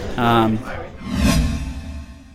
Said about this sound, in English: All right, well, we did just come back from a little bit of a break, as you heard the swoosh come into the episode here.